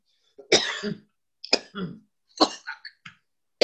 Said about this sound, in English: Are you coughing because I was wrong, or are you coughing because that was a good bong hit? That was a good bong hit.